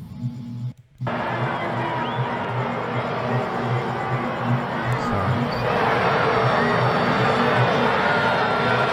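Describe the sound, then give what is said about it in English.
A packed stadium crowd of fans boos a player off the field during a preseason game in a steady, dense roar that drops out briefly near the start, then resumes and swells slightly louder toward the end, with a low rhythmic thumping underneath. “But those are his fans booing him off the field.”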